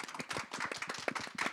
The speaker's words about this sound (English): Well, we want to thank very much our guests today. If you could join us with a round of applause in thanking